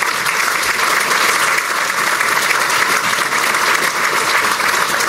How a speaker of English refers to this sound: Can we have a round of applause for all of our sponsors?